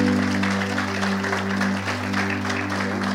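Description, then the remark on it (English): An audience in a church claps steadily, many hands producing a dense, continuous patter of applause over a low, constant hum, with no voices standing out. “Let's all give him a hand clap.”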